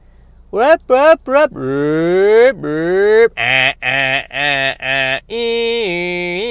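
A neighbouring songbird imitates an alternating car alarm: three quick chirps, long swooping wails, then a run of pulsed beeps and a steady tone, loud and with no other sounds.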